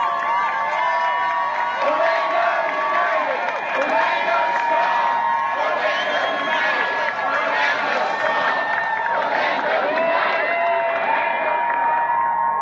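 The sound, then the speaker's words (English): A large crowd cheers and roars continuously, erupting as a group packs up their signs and starts walking, with overlapping shouts and whoops forming a loud, dense wall of sound that holds steady for over ten seconds before fading slightly at the end. “And the cheer and everybody just erupted.”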